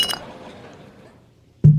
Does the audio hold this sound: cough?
no